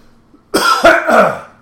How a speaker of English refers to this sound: I am sorry, I got a frog in my throat. I'm going to put a music on it. No, I'm just going to clear my throat.